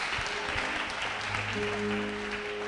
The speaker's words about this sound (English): Give the Lord a clap of thanks. Hallelujah.